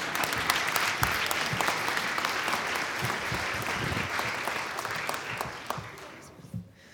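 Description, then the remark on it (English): A crowd claps for a group of kids in a dense, sustained wave of applause for several seconds, then it thins out and fades away near the end. “You can clap for these kids one more time if you need to.”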